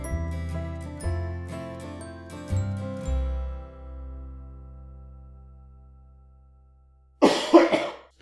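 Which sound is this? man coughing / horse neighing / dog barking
man coughing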